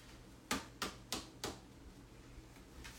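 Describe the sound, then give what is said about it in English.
Playing cards being shuffled: four quick, crisp papery slaps in a steady rhythm, followed by a couple of fainter taps, with no talking. “So these are the cards. I'm going to shuffle them real quick.”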